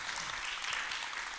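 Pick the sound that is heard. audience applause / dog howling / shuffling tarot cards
audience applause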